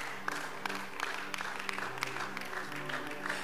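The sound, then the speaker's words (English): An audience claps steadily for a few seconds, a dense patter of many hands with sharp individual claps standing out, over a low sustained hum of background sound. “Clap for the people here.”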